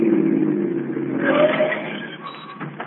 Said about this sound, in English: Listen, here comes another car. Flag them, will you? You don't have to flag them. They're stopping.